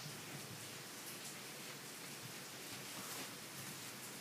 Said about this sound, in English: Is it raining? Not. It sounds like it. Sounds like it's fucking pouring.